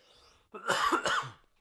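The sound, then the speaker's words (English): A sharp cough, a quick double burst lasting under a second, breaking a quiet pause with no talking around it. “Cough button.”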